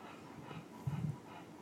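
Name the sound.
dog whimpering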